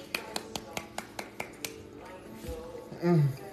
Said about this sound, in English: Doesn't matter. He deserves to be clapped at.